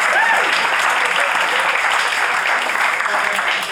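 An audience claps steadily and loudly throughout, a dense wash of many hands with no pauses, holding at an even level before easing slightly at the very end.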